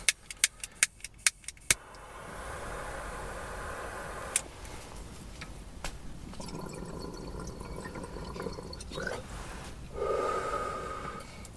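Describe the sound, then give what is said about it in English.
Muffled, enclosed car-interior ambience: a quick run of sharp clicks and rattles at the start, then a steady low hush with occasional close shuffles, a sniff-like breath and faint creaks. “Daddy's in the car doing a podcast.”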